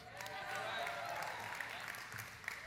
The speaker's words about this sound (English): And this is the only congregation of all the 8 New Life congregations that would issue a cheer that big for The Man from Snowy River. And it's beautiful and it's amazing.